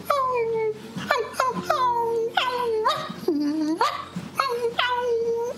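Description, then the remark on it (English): A person vocally imitates a whining puppy, making a series of high, nasal whimpers and yelps that rise and fall in pitch, several in a row with brief pauses between them. “A whining puppy. Pretty good, huh?”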